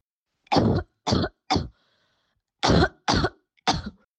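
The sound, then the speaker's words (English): Six dry, harsh coughs from a person who has symptoms and is COVID-19 positive, in two quick sets of three with a short pause between them. There is no talking, only quiet background. “To make things even more challenging, listen to a person who has symptoms and is COVID-19 positive.”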